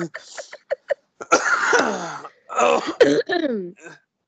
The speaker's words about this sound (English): and also that hurts because I've coughed so much in the last 2 weeks, I have basically a bruised rib.